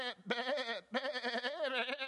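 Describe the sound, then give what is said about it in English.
Sheep and lambs bleating loudly, a short cry followed by a longer, wavering bleat, with other calls overlapping into a brief noisy chorus. “So on the twilight of the 14th day, you're going to hear this racket right before the twilight and the sun goes down.”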